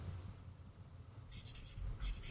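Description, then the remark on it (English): A pen scratches across paper in a few quick, rhythmic strokes as an answer is written, bright scratchy bursts after a low, quiet hum, with no one speaking. “I hope you can read my writing.”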